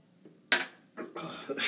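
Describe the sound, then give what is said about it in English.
Big Festivus shot glasses clink in a toast to the start of Festivus: a sharp glassy clink rings out, followed by more clattering knocks of glass and a final bright chink, with faint voices murmuring underneath. “Let's get a little cheers here. Cheers to the start of Festivus, gentlemen. Salute. Cheers.”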